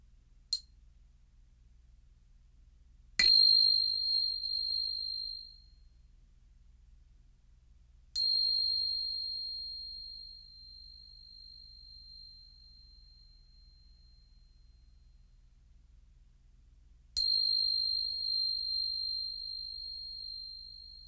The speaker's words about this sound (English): Do you guys hear that? I hear it. It's the bell. The end of the road. Do you guys hear it? I hear it.